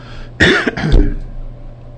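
human body sound, coughing and throat clearing

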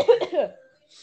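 human body sound, cough

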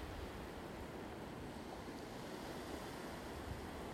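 nature, ocean waves

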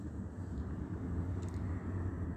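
vehicle, helicopter flying overhead

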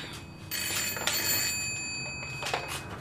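household object, telephone ringing

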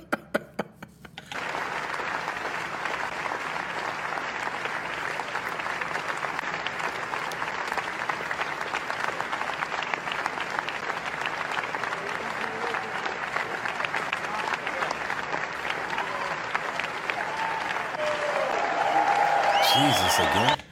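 crowd, audience standing

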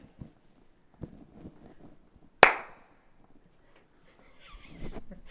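human body sound, hand clap

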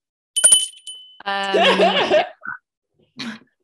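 signal or alarm, small bell ringing

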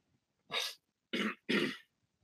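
human body sound, throat clearing

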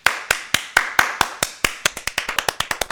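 human body sound, hand clapping

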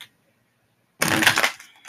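household object, tarot cards being shuffled

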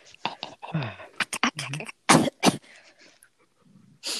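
human body sound, coughing

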